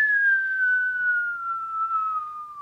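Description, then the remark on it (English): A single sustained whistle, clear and fairly loud, gliding slowly downward in pitch over a few seconds, imitating a comet streaking across the night sky. No talking. “The sound it makes. Yeah, all comets make that sound. Very noisy.”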